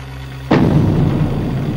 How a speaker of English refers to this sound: And another boom. No. I realized what I was hearing was footsteps. Big, big footsteps.